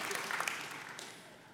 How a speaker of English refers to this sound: But sometimes, we can applaud that. One person's into that. Let's join in that one person.